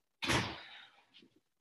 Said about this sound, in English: Whoa! Sorry, my front door is now flying open.